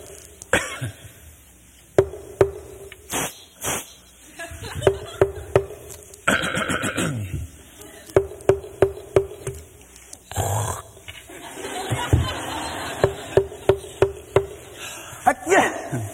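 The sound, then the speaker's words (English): A person makes deliberate coughs, sneezes and throaty hacks in short rhythmic clusters, with pauses between groups, used as a vocal tap code in which wall taps 1 through 5 are translated into different noises; no talking. “You could sneeze and cough and hack and spit inward.”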